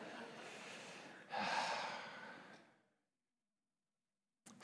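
Heavy, deep breathing: a long airy breath, then a sharp gasping intake that trails off into silence before another breath begins at the end.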